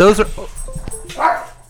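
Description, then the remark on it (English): A dog barks twice, loud: a sharp bark at the start, then a second, slightly softer bark after a short pause, with faint clatter in between, as the dog freaks out and pulls a cord out. “Your dog freaked out and pulled the cord out.”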